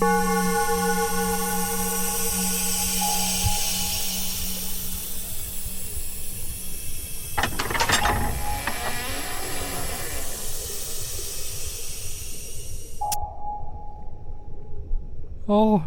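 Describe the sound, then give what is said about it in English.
A very secret door mechanism opens after being unlocked with a key: a steady droning alarm tone plays, then a burst of clanking and ratcheting with loud steam-like hissing, before the hiss cuts off abruptly and a lower hum remains. “And now it's time to open the door.”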